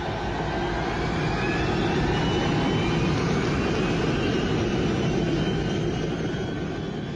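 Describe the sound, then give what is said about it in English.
A steady, powerful roar of a KLM Boeing 747's jet engines fills the scene, broad and rumbling with faint rising whines, as the throttles are pushed forward and the airliner accelerates down the runway for takeoff. No voices. “The huge KLM 747 now began accelerating down the runway.”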